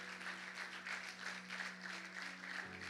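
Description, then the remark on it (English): An audience at a worship service applauds steadily to give God an ovation, a dense wash of many hands clapping at once, with a low sustained hum running underneath throughout. “Somebody give God an ovation. Come on. Clap your hands.”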